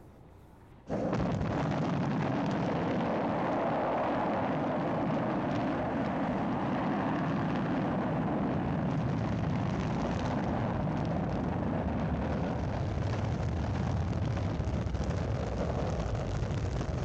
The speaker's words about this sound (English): Minerva and Guthrie careen to safety as the fusion lifters roar to life. The Colossus of Ice rises into the sky in a pillar of flame.